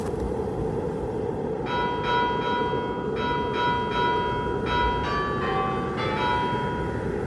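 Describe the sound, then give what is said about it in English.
A house bell is rung outdoors in freezing cold to see if anyone is home, with six or seven bright chiming strikes at uneven intervals, each ringing out briefly over a steady, loud, low rumbling background noise. “Maybe somebody's home. I gotta use the bathroom. Yeah, ring the bell, just ring the bell.”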